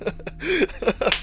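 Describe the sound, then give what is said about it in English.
A single sharp slap across a man's face lands near the end, a crisp smack, preceded by brief wordless vocal noises. “I slapped the guy.”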